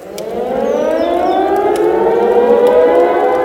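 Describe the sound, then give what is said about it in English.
Air raid sirens wail continuously, several overlapping tones slowly rising in pitch, deafeningly loud and sustained, heard about 5 kilometers outside a town, with no voices present. “It's the air raid sirens.”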